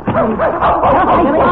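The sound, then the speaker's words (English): A dog barks and yips excitedly, a fairly loud, continuous run of high, wavering vocalizations with barely a pause over about a second and a half. “Jimmy, look, he knows him. The dog knows him.”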